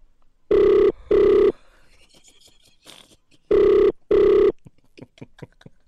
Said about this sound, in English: Okay. Oh, it's ringing.